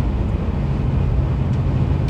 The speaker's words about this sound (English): And now I'm driving past truck stop.